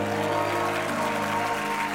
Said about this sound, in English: So, oh, clap your hands, almost all you people.